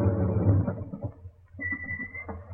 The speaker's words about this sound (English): Here, what's this? It's the van.